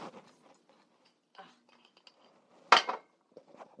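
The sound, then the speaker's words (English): Someone opening a reusable glass water jar, with a few soft clinks and scrapes, then a sharp, loud clatter of the lid about two-thirds through, followed by faint rattling. “I'm trying to open this water.”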